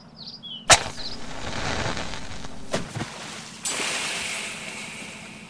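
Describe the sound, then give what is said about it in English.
A sharp crack as a special underwater flare ignites, followed by a steady bubbling, fizzing hiss, a second snap, then a brighter hissing rush as water snuffs the flame. Fairly loud, no voices. “The water seems to have snuffed the flame.”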